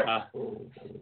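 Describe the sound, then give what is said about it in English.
A poodle growls at a cat in a short, raspy burst that dips, then rumbles on in two lower, buzzing pulses, lasting about a second. “And sorry, now I have poodles trying to mess with a cat that's by my feet.”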